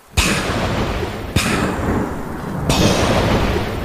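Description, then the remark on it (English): Three loud, booming thuds of a homemade thunder effect, roughly a second apart, each bursting in and trailing into a steady, noisy rumble with no talking. “The sound of the thunder.”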